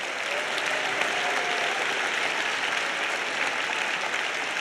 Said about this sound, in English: Come on, let's clap our hands and love Him right now.